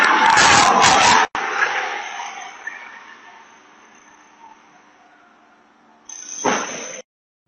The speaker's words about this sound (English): I can't play a whole lot of it. They'll probably copyright it. But from the Ring doorbell footage that I saw, she comes barreling down the road.